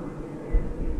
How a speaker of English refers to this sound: Wait, airplane.